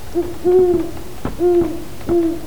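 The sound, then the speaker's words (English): An owl hoots several times in a steady rhythm, each low, hollow call held briefly, heard clearly with no voices, at night at the end of a garden. “We'd talk till the owl at the end of our garden began to hoot.”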